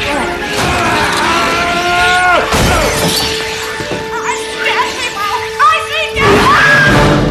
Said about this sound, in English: And then closely followed by my son's favourite sound effect of the whole film was when the spider then kills the parrot, and the parrot like has this amazing death scream as it dies.